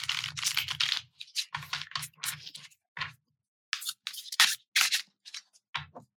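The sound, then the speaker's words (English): Shuffling of tarot cards: bursts of crisp, papery riffles and soft taps come in uneven clusters with brief pauses between, and no one speaks. “All right, so let's shuffle and pull a card to represent one of our firefighter parts.”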